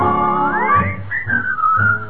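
Someone whistles a bright melody over a lively band accompaniment, the clear whistled line gliding up and holding steady notes, loud.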